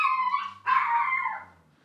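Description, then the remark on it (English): A dog lets out two drawn-out, high whining cries, the second longer and slowly fading, with no one talking. “I think this show with the dog in the background, you should just make it even weirder and have like a little person sitting on top of the oven as your sidekick and just go full on weird with it.”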